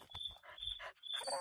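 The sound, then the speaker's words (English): A tame wolf whimpers, a thin, high-pitched whine that keeps breaking off and returning over brief huffing and rustling noises, steady and fairly quiet throughout. “That's what I'm calling him. Nice wolf!”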